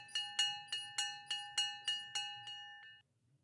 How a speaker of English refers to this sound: But there goes the bell. See you next time. Bye!